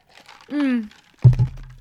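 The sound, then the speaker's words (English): A brief voiced sound, then a burst of crinkly crumpling as something is scrunched up, a few rough crackles over about half a second with a low rumble underneath. “Yeah, I got crunch that up real quick.”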